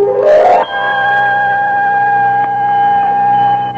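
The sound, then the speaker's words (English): Small finger bells called terezanes, worn by dancing girls on their fingers and toes, jingle in a brief bright flurry, then settle into a steady, shimmering ring of clear high tones that holds for several seconds, with no voices. “Little bells, which the dancing girls wear on their fingers and toes.”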